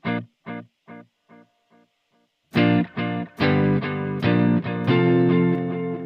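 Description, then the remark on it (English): A guitar note echoes through about six evenly spaced delay repeats that fade away, with a light spring reverb tail. Then loud distorted guitar chords strike and ring out, full. “And when you've got levels like that, it doesn't, I don't know that you'd be thinking about there's a reverb going on there.”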